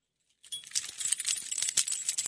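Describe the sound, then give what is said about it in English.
A bunch of keys, just found in a pocketbook, jangles and clinks continuously for a couple of seconds, fairly loud, with bright metallic rattling and small irregular bursts, no voices. “My keys, which have been missing, or so I thought, since December 31st, I found them in my wife's pocketbook.”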